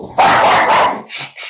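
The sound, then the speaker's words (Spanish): A dog barks loudly: one long, sharp bark followed by two shorter yips, with no voices. “¡Ah, mis oídos! La niña perro, ahí está.”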